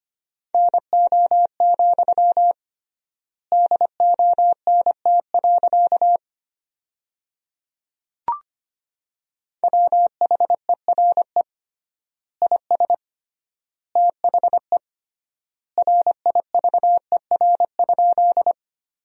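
Morse code beeps at 25 words per minute with triple word spacing, sending sentences built from the top 300 words, on one steady mid-pitched tone, keyed in quick bursts of dots and dashes with long pauses between words and a single soft click in one gap.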